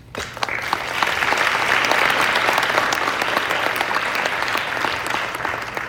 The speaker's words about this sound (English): And I really appreciate that, and you should give yourselves a round of applause.